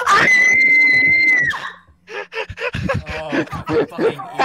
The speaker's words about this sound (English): The trains blow their horns as they get closer to the junction.